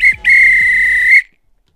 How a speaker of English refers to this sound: If this were a real bit of extra time, this is when the referee blew the whistle because it's finished.